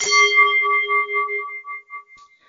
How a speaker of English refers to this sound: Could I please have the bell?